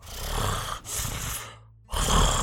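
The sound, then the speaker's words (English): A voice imitates heavy, rasping creature breathing: three long, loud breaths, drawn in and pushed out in slow succession, with a brief silent pause before the last one. No words are spoken. “And then you, as you're walking down this like very narrow, way, you start to hear like the sound of something like heavily breathing, like.”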